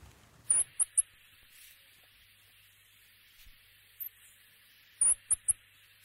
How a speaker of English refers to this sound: We do actually have, in order to paint pictures with sound here a bit, an audio file of what the official Kiwi Bird of the Year sounds like.